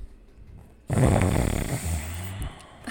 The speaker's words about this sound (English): Okay, well, I'm going to sniff The Quiet Tenant, which also sounds weird.